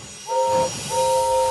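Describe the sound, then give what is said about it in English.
The steam engine Gordon arrives and sounds two steady, two-toned whistle blasts, a short one followed by a longer one, over a low rumbling background. No voices are heard. “Gordon wheezed his steam loudly.”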